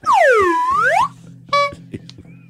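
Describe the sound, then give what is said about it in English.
A loud, swooping cartoon-like tone bends down and back up, followed by a short, bright honk from a horn sound effect, with faint murmuring underneath. “Oh, gave that a honk?”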